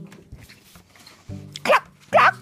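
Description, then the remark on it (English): Two loud, clipped barks about half a second apart, voiced by a person imitating a dog, clear after a quiet stretch of low background sound. “Bark, bark.”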